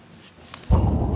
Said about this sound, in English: This porch camera captures the moment a massive explosion rocked a chemical warehouse in Houston early this morning. Flames engulfed the Watson Grinding and Manufacturing facility for hours. The debris field stretches up to 2 miles from the blast.